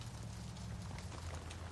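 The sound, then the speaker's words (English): Soft, steady rain in a city, with scattered light taps of drops striking the windows of buildings and the tops of passing cars, over a low continuous rumble. Quiet throughout, with no voices. “They make tap-tapping sounds at the windows of the buildings nearby and on top of cars driving by.”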